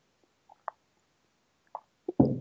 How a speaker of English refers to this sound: Sorry, let me have a sip of water.